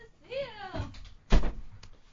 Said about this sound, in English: Well, oh, it's all right. Knocked over the drink there.